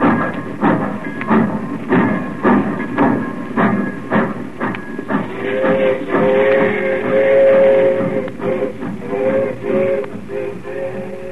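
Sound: train departing from station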